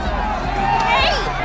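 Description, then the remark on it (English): A dense, loud crowd at the fall of the Berlin Wall in Germany fills the whole moment, many voices blending into an excited roar of shouting and chatter with no single speaker standing out. “So I think that is some sound of the actual Berlin Wall falling that we found.”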